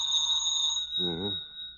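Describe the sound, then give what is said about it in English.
A telephone rings late at night, at four minutes past eleven, with a steady, high-pitched electronic tone that holds for the whole clip, and a short voiced murmur briefly overlaps it partway through. “Wouldn't want to lay a little bet why this phone's ringing at this time of night, would you?”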